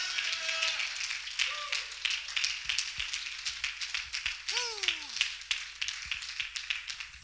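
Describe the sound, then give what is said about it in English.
A crowd, standing, claps hands to God steadily and vigorously throughout, dense overlapping claps mixed with scattered shouts of triumph and voices rising above the din. “I wonder if you could stand to your feet, clap your hands to God with all of your might, and give God a shout of triumph.”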